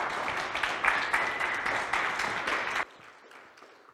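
A crowd applauds a man as he comes up, with dense, steady clapping for nearly three seconds, then it drops off sharply, leaving only a few faint scattered claps.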